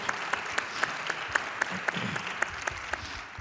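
A church audience applauds steadily, here and online, for the teacher of a 12-week scripture class: a dense wash of many hands clapping with a few sharper individual claps standing out at a regular beat, moderately loud and sustained throughout.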